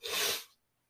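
A single loud, breathy sniff through a stuffy, runny nose, a sharp hissing rush of air lasting about half a second, then silence. No one speaks.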